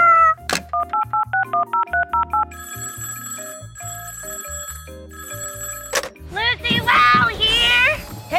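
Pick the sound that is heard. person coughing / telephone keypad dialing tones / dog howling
telephone keypad dialing tones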